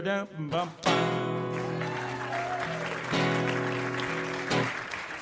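An audience claps steadily throughout, prompted by an applause sign being put up, a dense wash of applause mixed with loud sustained musical chords that shift a few times, with a brief burst of sound at the start.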